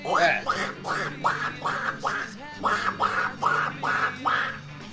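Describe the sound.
A voice imitates Donald Duck, squawking out about ten nasal, quacking syllables in a quick, steady rhythm. The squawks are fairly loud, with only a brief pause midway.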